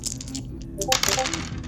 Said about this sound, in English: Perfect. Give me a dice roll on that. Not excessively high, but I have it.